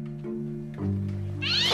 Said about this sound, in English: Jeez! It was just a cat. Let's keep moving. Oh, holy crap! What is up with that cat? Is someone throwing it? Let's not keep moving, because there is an insane cat down here.